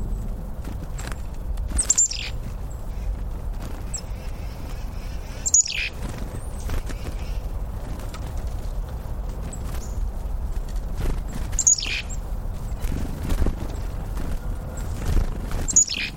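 Small birds at a feeder give short, bright, downward-sliding chirps every few seconds, alone or in quick pairs, over a steady low background rumble with no one talking.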